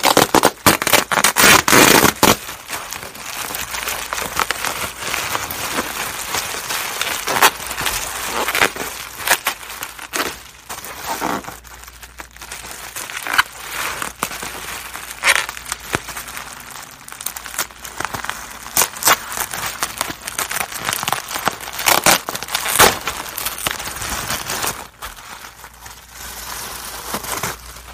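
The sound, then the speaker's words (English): Loud crinkling and crumpling of packaging material, with sharp tearing bursts and papery rustles as a wrapped teacup from a tea time box, made in India, is unwrapped, continuous and uneven throughout with no talking. “I'm going to set this right here as we get into this, this package thing right here.”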